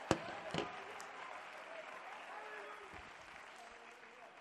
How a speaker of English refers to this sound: Wherever you are, you ought to shout praises to God and clap your hands unto the Lord.